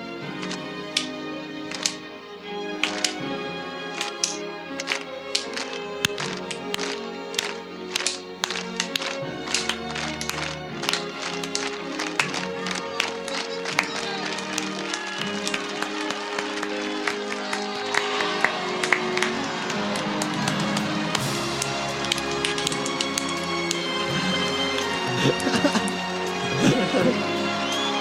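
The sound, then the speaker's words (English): Single sharp claps ring out at a slow, spaced rhythm, gradually quickening and multiplying until they merge into loud, continuous applause with crowd noise, all over a steady tonal background. “Slow clap. The slow clap.”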